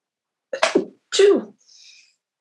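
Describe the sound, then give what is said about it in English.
Two sharp, explosive sneezes in quick succession, fairly loud, with a faint airy hiss trailing off after the second one. No talking. “Bless you.”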